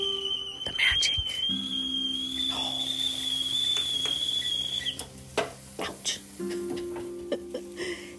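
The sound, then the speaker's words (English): A kettle whistles with a steady, shrill high tone for about five seconds as water boils for coffee, then cuts off, followed by clinks and clatters of kitchenware, with a low hum underneath. “Waiting for the whistle. It's coming. Here we go.”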